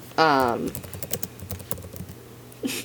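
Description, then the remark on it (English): Rapid, busy, furious clacking of computer keyboard keys fills a couple of seconds, fairly loud. A brief voice sound comes just before the typing and another right after it. “A little bit sound effect if you, like, furiously typing.”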